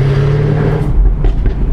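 A sports car's exhaust revs loudly, switched by a dashboard button to send the exhaust gases around straight pipes rather than through the baffles. A deep throaty roar climbs and then drops into a rough, burbling rumble, with no voices over it.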